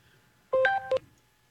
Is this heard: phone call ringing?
yes